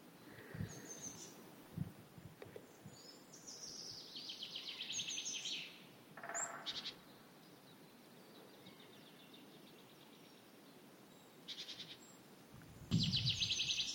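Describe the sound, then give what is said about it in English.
A male chaffinch sings a fairly faint, descending trilled phrase with scattered chirps from other birds before and after, in a quiet English woodland in early spring with no talking. “It's that male chaffinch again.”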